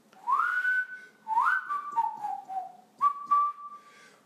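Someone whistles the theme tune of the TV show Green Acres, with clear sustained notes that rise and fall in three connected phrases, no talking.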